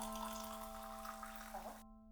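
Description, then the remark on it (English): Boiling water pours steadily into a cup to make ginseng tea, a continuous splashing hiss over a low electrical hum, then cuts off abruptly just before the end. “But a cup of ginseng tea made with boiling water is enough to warm the whole body.”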